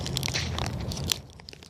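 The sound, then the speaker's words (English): A protein bar wrapper is torn open: a brief burst of crinkly, crackling plastic noise with a sharp rip near the end, then fading rustles. No one speaks. “Let me get this protein bar out.”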